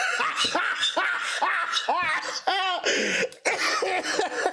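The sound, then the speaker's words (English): A loud burst of laughter from a person who has COVID breaks into rough, coughing fits midway, the cough and laugh tangled together over several seconds before the laughing resumes. “Don't cough, laugh every time.”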